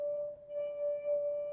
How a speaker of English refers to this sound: I'm vibrating this wine glass, and it's going back and forth, But because of the size of the glass, it vibrates at one frequency. And if I do it again, it's going to be the same frequency.